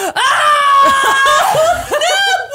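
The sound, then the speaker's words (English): A man lets out a loud, high-pitched excited scream that rises and wavers, breaking briefly before surging again, sustained for a couple of seconds. “He screamed. So he just screamed, clenched fist, like went nuts, freaked her the hell out.”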